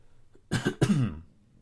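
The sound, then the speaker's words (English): Two raspy coughs burst out back to back during a guided breathing meditation, the second drawn out slightly longer, with quiet background before and after. “Excuse me in advance if I'm coughing during this at any time.”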